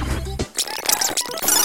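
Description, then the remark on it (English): The control stick of a genuine Nintendo 64 controller squeaks and creaks in quick, uneven bursts as it is wiggled, mixed with scratchy clicking as the buttons are hit, after a brief low droning tone at the start. “You can hear it squeaking as I wiggle the control stick and I hit the buttons, perhaps.”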